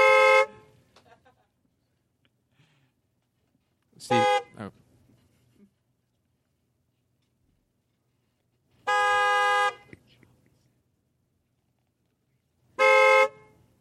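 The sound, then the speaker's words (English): Car horns honk in four separate loud blasts from a group of friends in a beep club. Each is a bright, steady, harmonic beep lasting under a second, with pauses of a few seconds between them and a faint voice briefly heard. “she invites her friends, and they have a beep club, and they beep.”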